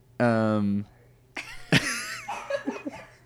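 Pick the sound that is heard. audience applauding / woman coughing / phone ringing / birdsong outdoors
woman coughing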